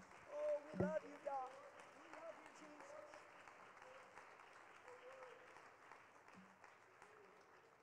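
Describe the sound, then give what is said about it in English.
An audience claps their hands in a dense, steady patter of applause, loudest at the start and then settling into sustained clapping, with voices calling out faintly over it, clapping unto the Lord in a church service before being seated. “Why don't we clap our hands unto the Lord one more time before we're seated.”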